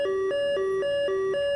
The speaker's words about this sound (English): An alarm goes off above you that kind of startles both of you, and a red light begins to spin, and you hear, incoming aircraft, 6 o'clock.